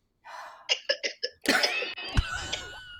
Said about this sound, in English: You hear a coughing?